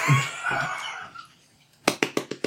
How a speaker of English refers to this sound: You're clapping yourself. I'm clapping the reading. Okay. And also yourself.